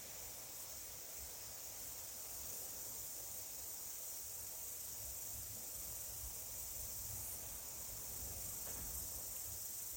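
A faint, steady outdoor trill of crickets runs without pause under a soft hiss of background noise. No voices, and no distinct individual chirps stand out.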